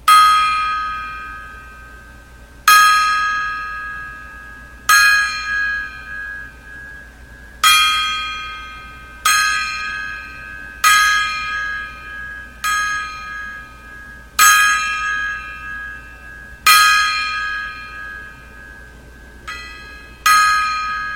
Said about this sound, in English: So here we go, a 10 gong salute.